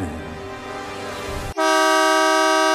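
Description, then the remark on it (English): A loud, sustained horn of a giant truck in a film scene blares steadily for over a second, a bright, brassy tone with rich harmonics, following a burst of noisy rumbling engine or scene sound. “There's nothing more distracting than a giant car horn.”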